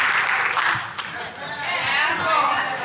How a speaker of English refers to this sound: Not enough of you are clapping.